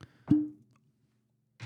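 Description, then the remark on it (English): A cork pops once, crisp, from a bottle of Glendronic 18 Allardyce whisky being opened, with a hollow ring that quickly fades into quiet; a soft rustle follows a moment later. “We need a cork popper on there.”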